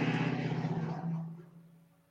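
A truck rumbles past outside, its low engine drone loud at first and then steadily fading as it moves away, with no voices.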